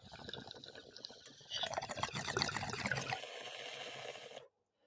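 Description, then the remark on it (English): Gurgling bong water bubbles steadily for a few seconds as someone takes a hit through a clogged bong, growing louder and busier midway through, a wet churning that stops abruptly, with no talking. “Oh, she's clogged as fuck. I just heard that chug. It's really bad.”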